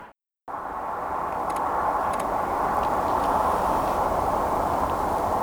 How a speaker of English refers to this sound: It's another car coming.